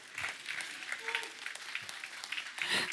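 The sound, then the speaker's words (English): An audience claps steadily in a dense, crackling wash of applause that stays fairly loud throughout, with a brief murmur of voices underneath and a slight swell near the end. “That clap was far too long.”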